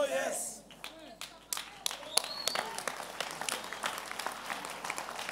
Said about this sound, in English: That moment, people clap hands without knowing what they are doing.